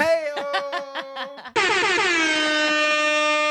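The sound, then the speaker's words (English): A loud air horn stutters through about six quick honks, then holds one long, steady blast to the end, brassy, with no talking over it. “Yes, and I have the air horn as well.”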